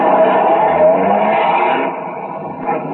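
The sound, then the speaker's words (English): A car engine runs steadily and loudly, then eases off and fades slightly as the vehicle pulls out of the police garage. There is no talking. “By 2:35, the other half pulled out, and a few minutes later, Ben and I followed.”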